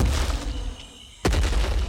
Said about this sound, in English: Reader, look. He's sniffing and stomping all around our tree, trying to find a way up.